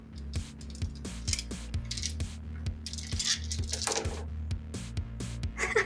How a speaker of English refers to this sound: I rolled a lot of dice and I got one success.